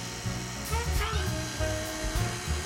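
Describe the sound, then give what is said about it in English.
An electric mixer whirs steadily for the whole stretch, a buzzing motor hum with a thin high whine that wavers slightly as the beaters turn, while evaporated milk is poured into the bowl. “Pour that in while it's mixing.”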